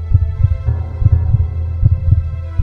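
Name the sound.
pounding heartbeat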